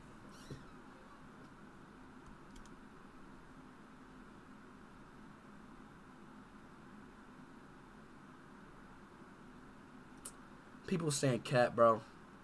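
A few loud cat meows arrive in a quick cluster near the end, rising and falling in pitch, after a long stretch of steady low background hum.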